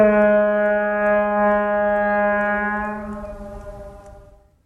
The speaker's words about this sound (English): Yeah, it's something that I'm longing to hear. It's a ship's horn. It's a ship's horn.